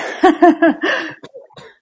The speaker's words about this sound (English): Oh, there's already the first cough. I apologize if I'm coughing in this episode.